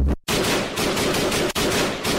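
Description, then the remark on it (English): A loud, continuous burst of rapid gunfire, like an automatic weapon, with two brief breaks in an otherwise dense, harsh rattle. No voices are heard. “Get yourself shot.”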